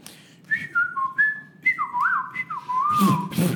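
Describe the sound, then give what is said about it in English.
A person whistles a short, wavering tune of several sliding notes, fairly loud, ending with a couple of breathy puffs of air. “can you whistle?”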